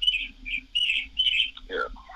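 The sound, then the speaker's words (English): Birds chirp steadily in the background, a run of bright, high trilling calls in short bursts with a low hum underneath and a brief lower chirp near the end. “And I also appreciate the birds in the background that are making me even more upset that I'm not in Hawaii right now.”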